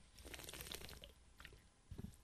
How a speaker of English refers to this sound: I'll make it general and I won't give specifics as to the interview, but I'm going to take a drink of my water.